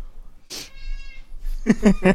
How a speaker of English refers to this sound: One cute cat sound out of a possible several cute cat sounds.